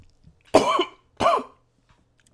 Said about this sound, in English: Shit. This ain't no joke. Shit, I'm choking for real.